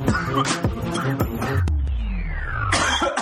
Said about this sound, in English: Start over, I choked on my water. I'm like, it just started to break down as he was coughing, like, I was trying to hold it in, but I was like, that just makes it worse.